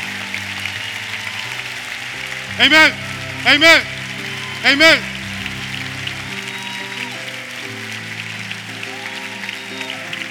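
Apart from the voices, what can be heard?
audience cheering and applauding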